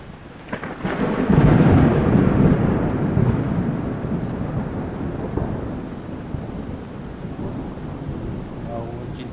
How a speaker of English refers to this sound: We need to get cover from the storm. I mean, plus, like, we're literally getting soaked.